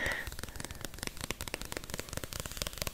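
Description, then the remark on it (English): Rapid, crisp fingernail taps on a lime green sign with black lettering, an irregular stream of light clicks with a slightly sticky edge, steady and fairly soft throughout with no talking. “This has a nice crisp tippity-tappiness to it.”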